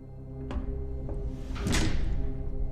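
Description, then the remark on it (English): Doors opening into a study over a steady low hum: two sharp clunks, then a longer, louder sweeping noise as they swing open, with no one talking. “Meanwhile, while they are doing that, Marmaduke, the doors open up for you.”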